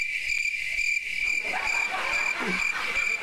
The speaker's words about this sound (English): Crickets. Nothing. Nothing from Saul.